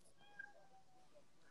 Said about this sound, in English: Shut that cat up.